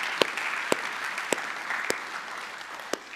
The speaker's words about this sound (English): Thank you to the teams. And I just ask if you would just give them a round of applause, thanking them for the work that they've done. Praise the Lord.